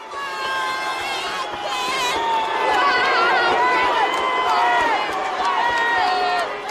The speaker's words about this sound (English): going to get loud, it's going to get rowdy. The fight ends controversially, and some of the crowd aren't very happy.